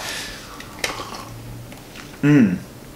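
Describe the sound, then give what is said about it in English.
Wine trickles and splashes into a glass with a soft, steady hiss, broken by a light clink, then a brief ringing glassy tone near the end. “There's a certain tranquility that comes with a pouring glass of wine, so...”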